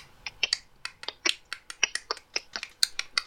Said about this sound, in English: And every time he talks, he's clicking and pointing his finger.